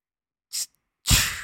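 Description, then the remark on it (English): A voice imitates a Pepsi soda can being opened: a short, sharp hiss, a brief pause, then a louder, longer fizzing 'pssht' that slowly trails off. No words are spoken. “The police officers start grinning as shit, and you hear the iconic soda can opening.”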